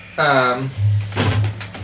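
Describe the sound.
A cardboard game master screen is knocked over, toppling with a short, hollow thunk and brief clatter, just after someone's voice rises over a low background hum.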